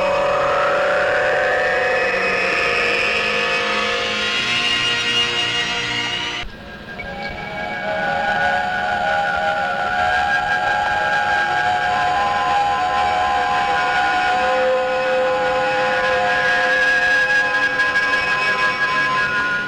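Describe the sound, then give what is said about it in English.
A shimmering sci-fi transporter beam effect as people are beamed aboard: bright tones sweep steadily upward for several seconds, cut off abruptly, then settle into a sustained, glittering hum that lingers loudly with no voices. “Ready for transport.”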